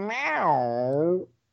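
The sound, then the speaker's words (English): A person's voice imitates a cat's meow: one drawn-out, whiny call that rises and then slowly falls in pitch, fairly loud, lasting just over a second before cutting off. “You sounded like a cat just then. You literally sounded like a cat.”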